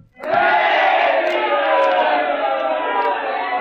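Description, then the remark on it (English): A large crowd of people in Rome shouts and roars together for Caesar in a sustained, loud swell of many voices that rises sharply and holds steady for several seconds, fading slightly toward the end. “What means this shouting, Cassius?”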